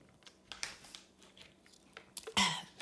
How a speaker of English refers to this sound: But let me take a sip of water.